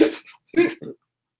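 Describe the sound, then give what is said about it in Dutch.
A person voices a quick series of hiccup-like sounds, three short bursts in close succession, the last two sharper and jerkier, fairly loud with silence after. “Of dat die begint te hikken hier zo.”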